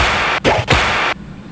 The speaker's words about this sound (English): What was that? That was a whip.